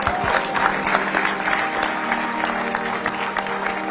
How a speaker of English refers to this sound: I would argue that there was not enough clapping for that part right there, and that the collective energy of this room is bullshit. Let's step it up.